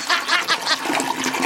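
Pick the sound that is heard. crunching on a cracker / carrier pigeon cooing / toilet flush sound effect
toilet flush sound effect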